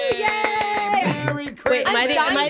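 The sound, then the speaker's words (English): A single person claps rapidly and steadily, the sharp claps continuing throughout while a voice cheers and whoops over them. “Am I the only one clapping?”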